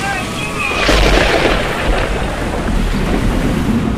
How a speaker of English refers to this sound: Master, we need to blast through the hull. Righto, Smiley! Here it comes! Now! Push through! Now!